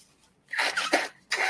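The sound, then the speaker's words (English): Someone blows their runny nose into a tissue: a long, loud, breathy honking burst followed by a shorter second blast, with no talking. “So I forgot to blow my nose, so I will do that, blowing my nose.”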